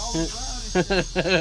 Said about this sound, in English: Damn, y'all loud, man. I'm trying to record. Shout out to the cicadas. That's why I don't be recording out here. Y'all be on some silly shit.